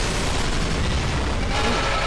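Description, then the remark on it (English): A loud, deafening, unnatural-sounding explosion sound effect from above fills the whole stretch, a dense, roaring blast with heavy low rumble and crackling, sustained at full intensity with no voices. “And as you descend the spiral stairs, you hear a deafening explosion from above.”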